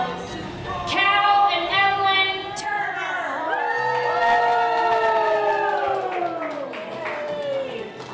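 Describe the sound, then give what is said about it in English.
A large crowd cheers and shouts excitedly as a husband and wife are announced king and queen at a prom, with high whoops and screams rising over scattered clapping. The cheering stays loud and sustained for about eight seconds. “Lorimer, to the thrill of the crowd, announced husband and wife as the king and queen for Crossroads.”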